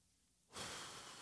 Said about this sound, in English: Deep breathing.